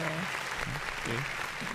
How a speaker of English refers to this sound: What are we clapping for?